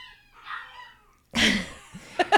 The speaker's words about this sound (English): I think the dogs are howling for Erica Shields.